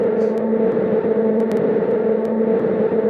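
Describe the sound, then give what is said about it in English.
A steady, unbroken wash of white noise holds at a constant loudness for the whole stretch, with a low hum running through it and a few faint ticks on top. No one speaks. “And since you probably wanted to hear it just by itself, some nice white noise.”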